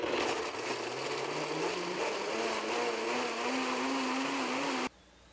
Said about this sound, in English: Now I've got a high-speed blender, but if you don't have a high-speed blender, all you have to do is soak your raw cashews in water for about 3 to 4 hours and drain them